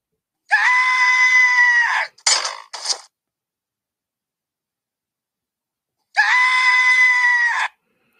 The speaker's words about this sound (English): That sounds like a scream right there, man. That sounds like a big scream right there, man. That's a big scream for me, man.